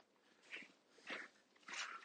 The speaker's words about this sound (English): But he's back, his pack of dogs, running free.